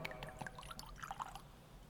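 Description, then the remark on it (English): A small splash of water is poured into wine in a chalice during a prayer, a brief, soft trickle with a few bright dripping plinks, quiet, with no talking. “The mystery of this wine”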